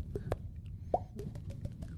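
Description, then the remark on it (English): A mouth-made water drop sound: one bright, hollow plop with a quick upward pitch bend, surrounded by a few softer tongue clicks over a low, murmuring background. “Wait, can you make the water drop noise sound?”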